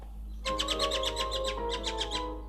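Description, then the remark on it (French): A bird sings a quick, even string of bright, high chirps for about two seconds, clear, over a steady low hum and faint sustained tones; birdsong recorded on the island of Martinique. “Alors, je voulais commencer mon album avec le chant des oiseaux.”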